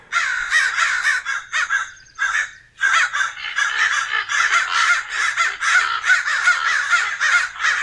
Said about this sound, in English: They're just a couple of good crows. Couple of good crows hanging out.